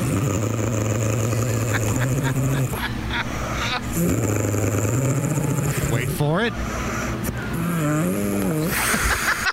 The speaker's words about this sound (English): The way she snores sounds like dog growling, wet fart.